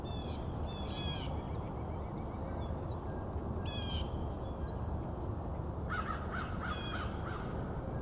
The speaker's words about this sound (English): A couple more crows headed this way.